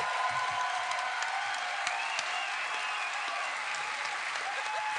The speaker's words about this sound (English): It's a little misleading, but I'll take the applause. Thank you.